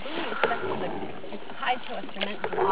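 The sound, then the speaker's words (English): A small boat on a boat ride out toward a buoy, moving across water with steady lapping and swishing and a few brief splashy bumps, while indistinct voices murmur in the background. “We're going on a boat ride, and when we get to the buoy, I'm going to go swimming.”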